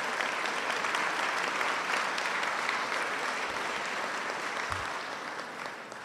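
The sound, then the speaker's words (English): An audience claps steadily at an evening event in a dense, sustained wash of applause that fills the whole stretch, easing off slightly toward the end. “Give yourselves a round of applause. Give our city a round of applause.”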